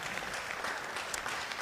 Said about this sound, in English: Yeah, we can clap